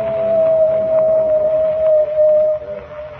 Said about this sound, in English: The coyote has howled three times.